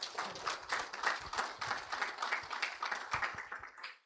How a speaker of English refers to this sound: May we have a generous round of applause.